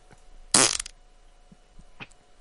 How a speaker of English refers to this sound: Play the one that when he farted in front of his daughter's face at the grocery store.